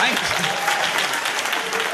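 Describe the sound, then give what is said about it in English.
A crowd applauds steadily, a dense wash of clapping with scattered cheers and shouts mixed in, loud and sustained for the whole stretch. “thanks for cheering the old near decline.”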